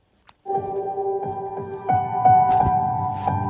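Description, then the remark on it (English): A pop song intro begins after a brief click: sustained keyboard chords ring out with steady, evenly spaced beats, building slightly in loudness, with no voices yet. “we're going to go ahead and play … song called …”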